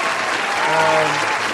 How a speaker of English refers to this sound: applause for that attempt.